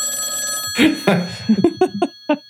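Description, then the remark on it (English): A telephone rings with an incoming call, a steady electronic trill throughout, fairly loud, while several sharp bursts of other sound cut in over it near the end. “Another phone call. Two to start out. Ringing tonight.”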